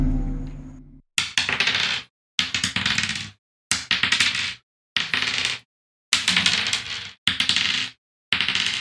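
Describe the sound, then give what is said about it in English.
Dice rattle and clatter across a tabletop in about seven quick, separate rolls, each a short burst of clicking, fairly loud, with no one talking; hit dice being rolled in a tabletop role-playing game. “Do we have 5 hit die? We should have 6.”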